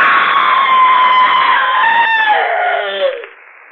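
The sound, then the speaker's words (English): A long, loud, shrill scream in the Inner Sanctum radio drama, held for about three seconds, wavering slightly before sliding downward in pitch and breaking off abruptly, with no talking around it. “Well, friend, as we say here in the Inner Sanctum, it's all over but the screaming.”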